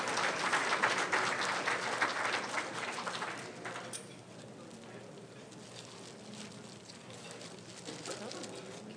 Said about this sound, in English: Please give a round of applause as Pastor Arnett comes.